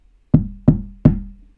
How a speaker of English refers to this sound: With an evil glint in his eye, he knocked on the first little pig's door.